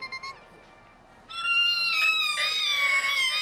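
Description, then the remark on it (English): Shrill screeching metal: after a faint, brief squeak, a loud sustained high-pitched squeal of wavering, layered tones kicks in and grinds on to the end, with no voices. “That's one of them screeching metal sounds I was talking about earlier, man.”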